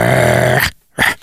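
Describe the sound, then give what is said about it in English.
A person voices a rough, sustained dog-like growl that cuts off into a brief pause, then snaps out a short bark, all loud with no other talking. “So you're saying if my child barks at someone else. Imagine that. Your child just goes.”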